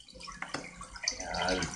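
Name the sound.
toilet flushing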